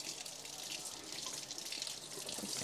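Water pours steadily from a faucet, a continuous bright hiss with faint splashing texture, fairly quiet and unbroken for a couple of seconds with no voices.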